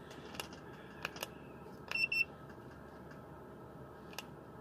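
A digital thermometer gives two quick, high-pitched electronic beeps as it reads more than 30 degrees Celsius, surrounded by a few sharp plastic clicks and ticks over a low background hum.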